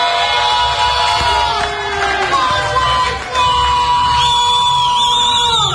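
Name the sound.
club crowd cheering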